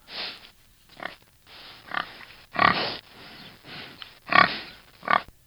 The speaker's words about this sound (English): That was a pig, by the way. That wasn't me. Let me play it again.